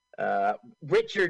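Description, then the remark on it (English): In a film, a voice mimics a telephone ringing with two short vocal bursts, "bring, bring," a brief pause between them, like a comic imitation of an old phone bell rather than a real ring. “He goes, the phone rings, goes, bring, bring.”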